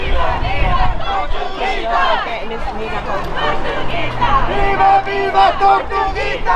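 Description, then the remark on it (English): A large Stop Cop City protest crowd chants "Tortuguita vive" and shouts together, many voices overlapping in loud, rhythmic bursts that carry steadily through the whole stretch without a pause. “Tortuguita vive can be heard at Stop Cop City protests because they want to continue on Tortuguita's legacy by continuing to fight the construction of Cop City.”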